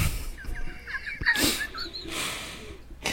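A chicken clucks in a quick run of short, warbling calls, fairly close and moderately loud, with a couple of brief noisy bursts breaking in. No one speaks.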